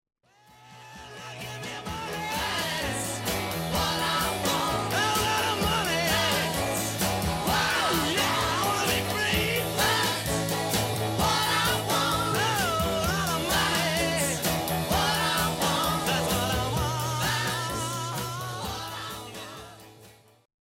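A loud, dense rock song with driving bass and drums under a raw, screamed lead vocal that wavers and shouts throughout, fading in at the start and out at the end.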